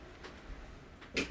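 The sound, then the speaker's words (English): A door swings shut with a short, bright clunk and latch click, preceded by a couple of faint handling noises in otherwise quiet surroundings. “Had to close my door.”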